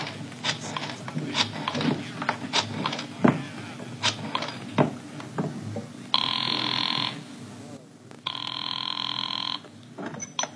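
An old-fashioned telephone bell rings twice in long, steady bursts with a pause between, following a stretch of busy, clattering background noise.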